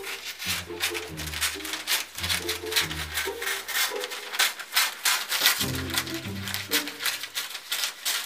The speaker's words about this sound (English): Step 4, take your scissors and cut paper. Cutting paper.